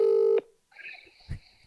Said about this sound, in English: Now we do the second ring because he's fumbled. He's found his phone now, and now he'll pick up.